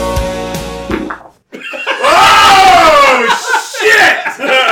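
A steady buzzing tone cuts off, then a long, wobbly fart sound effect rises and falls in pitch, loud and sputtering, with raucous laughter and shouting piled on top.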